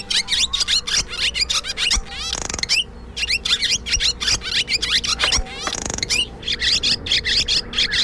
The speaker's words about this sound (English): Here are some songs and calls of the barn swallow.